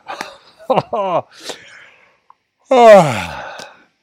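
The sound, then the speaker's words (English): A person deliberately lets out a long, drawn-out yawn that slides downward in pitch, fairly loud, after a few shorter breathy vocal sounds and a brief pause. “And see if you can have a proper yawn.”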